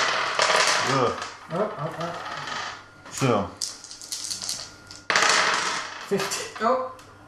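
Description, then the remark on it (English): Black and white dice clatter and tumble across a hard tabletop in a loud burst as players roll them all together in a game, settling with a few scattered clicks, then rattle again, while people talk over the noise. “So we roll them all together.”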